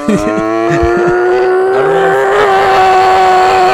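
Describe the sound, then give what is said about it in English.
A voice imitates a race car engine with a loud, buzzing drone, holding a steady pitch that climbs slightly and carries on for several seconds without pause. “You sound like a race car.”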